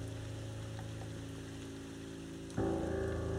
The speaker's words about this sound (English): There's a window looking out towards the back of the prison. You see just a grassy yard that leads to the back wall. Rain pouring down.